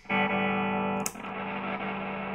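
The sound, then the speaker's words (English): A sustained, heavily distorted electric guitar chord played through a battery-powered MXR distortion pedal rings out loud and thick, with a brief scratchy burst near the middle before the fuzzy tone carries on steadily. “In the MXR. MXR distortion. Let's just see if this has got any battery in it.”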